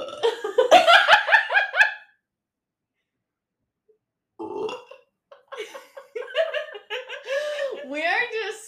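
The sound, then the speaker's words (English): A long, loud, croaking burp, then a couple of seconds of silence before people start talking with light chuckles. “Okay, I'm done burping for the.”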